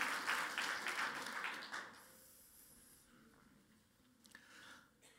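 A crowd breaks into a round of applause for the speaker's youngest daughter, dense overlapping clapping for about two seconds before it quickly dies away to a soft, steady hiss.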